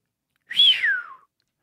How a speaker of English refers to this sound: It'd be cool if we could get a sound of someone doing one of those astonished whistles and then just insert it. I can't really now picture what it's actually supposed to sound like.